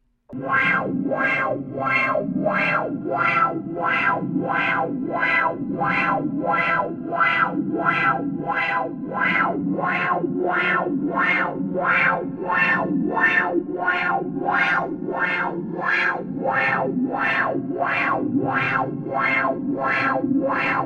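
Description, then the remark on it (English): Heavily processed, distorted music produced in a studio, based on a piece of music found on an ancient tablet discovered in an unmarked tomb in western Ukraine in the 1760s: a steady, fast pulse of buzzing, echoing bursts repeats about every 0.7 seconds over a continuous low drone, loud and unbroken with no voices. “No, this was actually produced in a studio. It's based on a piece of music found on an ancient tablet that was discovered in an unmarked tomb in western Ukraine in the 1760s.”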